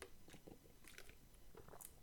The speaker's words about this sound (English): I'm so grateful I have this bottle of water that I can just sip on it.